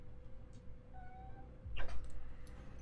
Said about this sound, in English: I don't know if you heard the cat. All I heard was meh. Even he's worried.